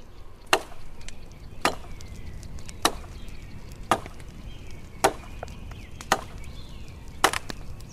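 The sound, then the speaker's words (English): A fire heating a bath of water crackles and spits, with about seven sharp, bright pops at irregular intervals over a low, steady rumble. No one speaks. “The fire crackles and gently spits.”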